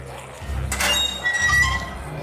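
sound effect, door squeaking open

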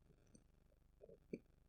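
human body sound, burp

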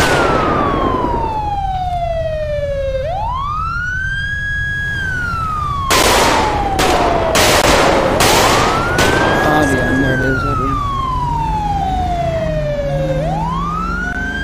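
vehicle, police car siren wailing

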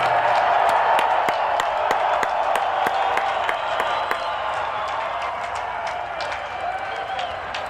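crowd, stadium crowd applause

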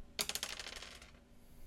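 dice being rolled

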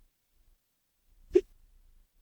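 human body sound, hiccup

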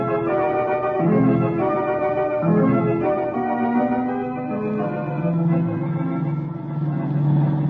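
vehicle, car engine racing

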